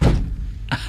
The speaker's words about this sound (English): I just hit my ankle on the chair. It's, that's okay.